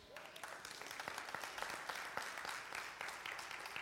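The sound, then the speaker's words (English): A crowd applauds steadily, many hands clapping in a dense, continuous patter at a fairly even level for a few seconds, with no voices standing out. “I'm looking, who's not clapping?”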